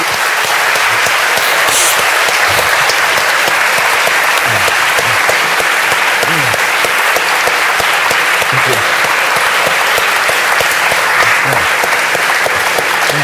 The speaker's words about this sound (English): No, stop, stop. You applaud too long. That's my standard traditional Stalinist joke.